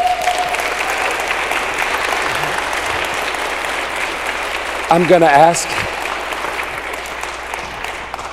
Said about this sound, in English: Would you give Jesus one last round of applause? Amen.